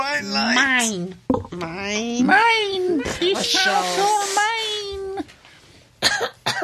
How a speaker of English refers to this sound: Oh, you coughing cockney cow.